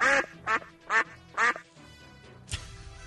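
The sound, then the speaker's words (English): Four loud, nasal duck quacks in a steady, evenly spaced rhythm, followed by a brief pause and a short rough burst of noise. “Anyway, we just sit in the back and eat bananas and make this thing duck noise.”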